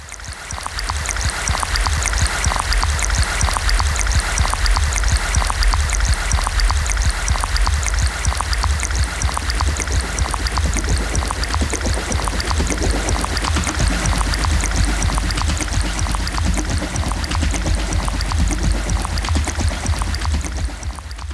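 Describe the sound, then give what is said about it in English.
Water flows steadily and continuously like a spring or small stream, a full rushing and trickling texture that stays even throughout with no voices. “It feels like the water is there, but it's being pumped, like my heart.”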